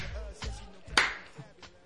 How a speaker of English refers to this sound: I think you're clapping off beat.